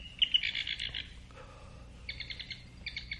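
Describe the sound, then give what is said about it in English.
A black-backed woodpecker gives a rapid series of harsh, rattling chattering calls, a long burst first and then two shorter bursts after a pause, clear over a quiet outdoor background. “That would be the black-backed woodpecker.”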